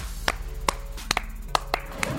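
About seven sharp hand claps land at an uneven, unhurried pace, each a crisp, bright smack over a low steady hum, with no voices.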